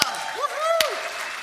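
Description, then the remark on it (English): Steady audience applause as a guest is welcomed to the stage, a dense wash of clapping with a couple of sharp claps standing out and voices whooping in rising and falling cheers above it. “Come on, give it up.”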